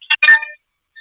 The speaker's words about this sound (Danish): Nå, nu skal jeg lige... Jeg tager lige telefonen her.